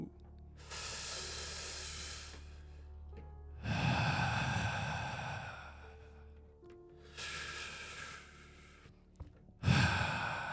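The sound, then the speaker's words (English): Slow, heavy breaths heard on the other end of a phone call, alternating long hissy inhales and deep rumbling exhales, about four in a row, with no talking. “Deep, deep breathing could be heard on the other end.”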